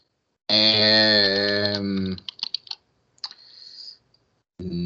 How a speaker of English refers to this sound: I just heard somebody viciously typing.